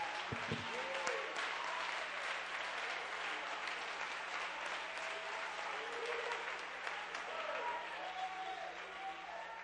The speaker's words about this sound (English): Come on, clap your hands and give God the praise.